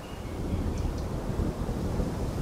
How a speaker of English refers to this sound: Ah, this is the life. Out in nature, the wind blowing through the trees, the sweet smell of pine needles.